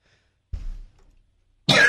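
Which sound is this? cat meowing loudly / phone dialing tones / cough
cough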